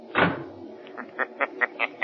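door shutting

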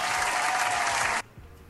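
round of applause

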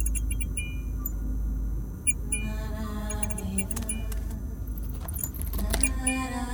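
keys jangling

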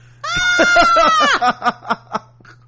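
horse whinnying

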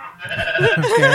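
goat bleating

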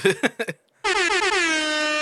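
air horn sound effect

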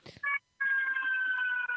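ambulance siren passing outside

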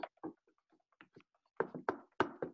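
knuckles knocking on wood

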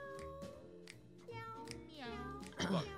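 cat meowing

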